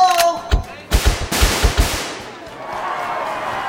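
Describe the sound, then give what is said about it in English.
A rapid burst of sharp, loud pops, like air pistol shots bursting a balloon vendor's balloons on Main Street, about eight cracks in quick irregular succession, then a lingering low rumble as the noise fades. “Wow, is that a Beamer P1 Magnum air pistol?”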